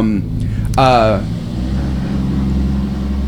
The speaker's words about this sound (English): I think that was a truck.